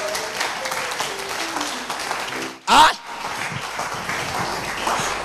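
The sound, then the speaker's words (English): An audience claps steadily for the Lord, a dense wash of many hands mixed with voices, broken by one brief loud burst partway through before the applause carries on. “Give the Lord a clap.”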